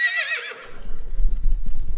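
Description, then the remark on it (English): A horse gives a loud, high whinny that trails off over about half a second, followed by a steady patter of hooves clip-clopping. “It's a horse, no?”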